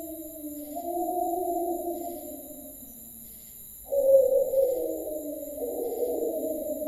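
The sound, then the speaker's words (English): A wolf howls in long, wavering tones that slowly slide downward, fade, then a louder howl rises and overlapping howls carry on as another wolf indoors calls back, with no talking. “Our friend the wolf again.”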